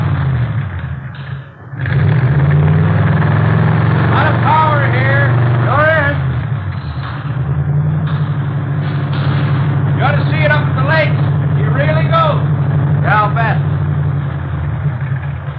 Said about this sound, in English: Mallory Ignition, Milled Heads, Twin Wakefields. Here, let me start it up for you. Okay. 120 horses under there. Yeah, sounds good. Listen at that. Beautiful, isn't it?